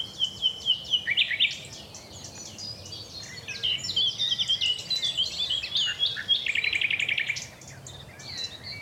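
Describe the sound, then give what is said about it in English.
A nightingale sings in rich, varied phrases, rapid trills and repeated notes, while several other birds chirp and call around it in a busy dawn chorus with a low background hum. “I want to leave you with as much nightingale as I can fit in, even though so many other birds are trying to drown him out.”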